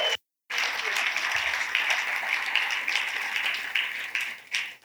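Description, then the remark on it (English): Sustained audience applause thanking everyone who helped with the camp, a dense wash of many hands clapping at steady loudness for several seconds, with a brief silent gap at the start and a tapering finish. “So for all the people that we haven't named, everybody that's helped with this camp, let's give them a rip-roaring thank you.”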